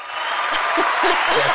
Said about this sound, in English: what other things we can put on the soundboard here besides an applause sound effect